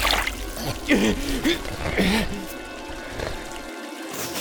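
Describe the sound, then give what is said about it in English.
Water trickles steadily from a fountain, a soft continuous splashing, while a voice briefly sounds over it in the first half. “Samuel, drink from the fountain.”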